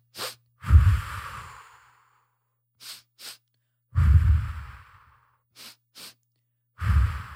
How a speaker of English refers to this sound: Breathing in quickly and out in a long, elongated breath. Into, out, one, into, out, one.